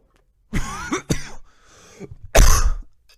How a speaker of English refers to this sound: As I cough my fucking lungs out. Holy shit.